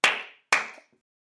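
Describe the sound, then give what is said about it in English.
Two sharp hand claps about half a second apart, each a bright, crisp smack with a short fading tail, followed by silence. No voices are heard. “Clap once if you can hear me. Clap twice if you can hear me.”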